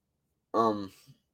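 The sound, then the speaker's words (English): A single short call of a Ceratopsian dinosaur in a video game, fairly loud, with a rich, buzzy, snore-like rasp that quickly fades into a soft breathy tail, then silence. “Kind of sounds like someone snoring, though.”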